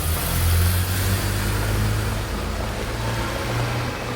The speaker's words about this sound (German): Da, aus der Arnulfstraße kommt ein Taxi. Nur der Fahrer ist drin.